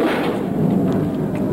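A steady, low rushing wind roars without pause, with dull, muffled thuds of zombies banging on a door buried in the noise, from the film Zombie (Zombie 2). No one speaks.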